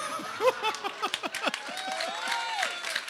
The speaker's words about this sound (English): None of the applause is for the poem. Now, it continues. Not the poem, not the poem.